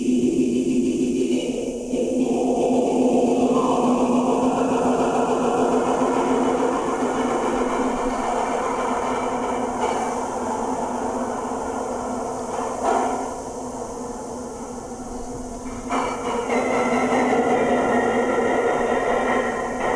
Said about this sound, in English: And I haven't even brought back in the low pass. Whenever I want to play in some wind, I can just pull that low pass right in.